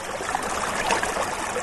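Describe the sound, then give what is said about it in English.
Heavy rain pours down in a steady, dense hiss that stays fairly loud throughout, with no voices over it, heard from under a tent on a cold day. “All right, so we're under the tent now. It's pouring rain.”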